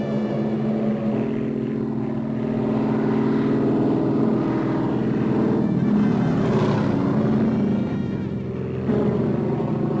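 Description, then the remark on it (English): A steady, loud drone of two Japanese Zero propeller planes flying overhead, the deep engine hum holding for the whole stretch and swelling slightly midway, with no voices. “It's those planes again. No. Different noise entirely. There they are.”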